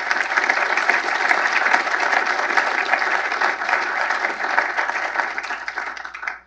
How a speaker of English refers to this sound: If you would, please join me in applause for his memory and the great work of our friends at Samsung.